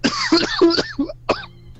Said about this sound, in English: Oh, gosh. I laughed and I coughed at the same time.